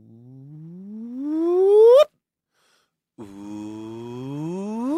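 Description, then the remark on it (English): A voice imitates a gravitational wave chirp, a rising hum that sweeps steadily upward in pitch and swells louder before cutting off abruptly; after a pause a second voice attempts the same rising glide. “So the whole thing is a chirp. You want to do it with me?”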